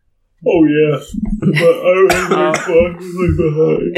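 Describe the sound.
Someone clears their throat and coughs several times in short bursts, mixed in with low voiced sounds and murmured talk.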